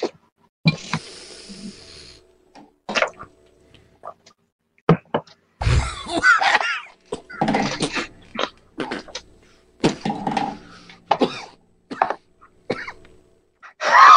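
A prolonged coughing fit after someone takes too big a hit: harsh, irregular bursts of coughs with raspy throat-clearing and hissing breaths between them, going on for over ten seconds without any talking.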